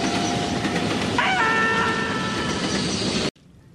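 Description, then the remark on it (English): An approaching train rumbles loudly and steadily along the railway tracks. Partway through, a high, shrill whistling tone rises over the roar, then the sound cuts off abruptly. “Listen, there's another train coming.”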